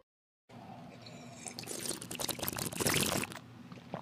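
Cold water is poured steadily into a glass for a few seconds, a bright splashing stream that grows fuller and louder before stopping abruptly. No one speaks.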